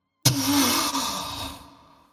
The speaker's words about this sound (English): Oh, dear. Was that the storm bag? That was a gasp.